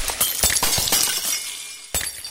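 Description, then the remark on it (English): Glass shatters loudly, followed by a spray of tinkling shards scattering for a couple of seconds, then one more sharp crash near the end. No voices. “I had one hit point left, so it shatters.”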